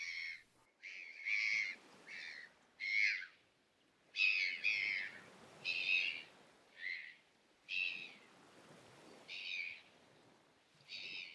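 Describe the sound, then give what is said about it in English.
Seabirds flying overhead by a shore call over and over, roughly ten shrill, high-pitched cries in uneven bursts, with the soft rushing wash of waves lapping against the shore underneath and no talking. “You can hear the waves lapping against the shore and some seabirds flying overhead.”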